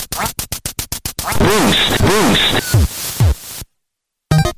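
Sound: duck quacking sound effect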